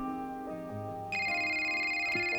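A bright electronic phone ringtone cuts in midway, steady and fairly loud, layered over soft background music with no one talking.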